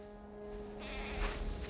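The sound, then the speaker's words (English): A goat, grabbed by the scruff of its neck and led along on foot, bleats once in a drawn-out, raspy call that starts partway through and carries on to the end, over a steady low background hum. “But knowing he has to keep up the pretense, he grabs the goat by the scruff of its neck and keeps on walking.”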